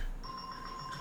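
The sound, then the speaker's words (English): A faint electronic buzzer, hit by hand, sounds a thin, high-pitched steady tone with a brighter overtone, holding on almost without break after a brief quiet start. “That's I thought I hit the buzzer twice just in case you didn't hear it.”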